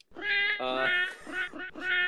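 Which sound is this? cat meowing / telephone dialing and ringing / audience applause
cat meowing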